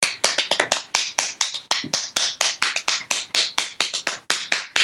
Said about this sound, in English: That's the original demo. Just me clapping.